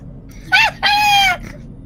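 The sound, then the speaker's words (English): Two loud honking calls from geese: a short blast, then a longer drawn-out honk with a slight downward slide at the end, over faint background noise. “Geese, get out of my ready room.”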